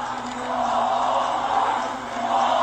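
A baseball stadium crowd at a Mississippi State game roars and chants after a batter is walked, a steady, dense wall of voices, loud throughout with a slight dip near the end before swelling again.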